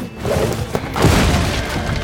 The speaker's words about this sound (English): In an instant, his whip lassoed a chandelier. He swung over the crowd of soldiers, crashing through the front door.